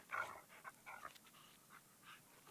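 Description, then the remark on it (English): A dog growls at a door in short, rough bursts, strongest at the start and trailing off into quieter, breathy rumbles. It sounds soft overall, with no one talking. “He's just growling at the door.”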